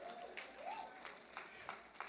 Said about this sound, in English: Clap if you want to clap.